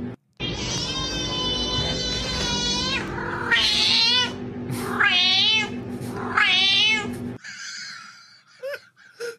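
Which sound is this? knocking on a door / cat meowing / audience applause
cat meowing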